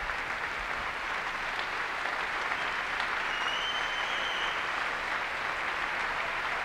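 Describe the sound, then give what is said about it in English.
Steady, sustained applause from a large concert audience and orchestra for classical guitar duo Robin Hill and Peter Wilczynski after a concerto, a dense even wash of clapping with no gaps, holding at a constant level throughout with a faint high whistle-like tone briefly above it. “Orchestra applauding them as well.”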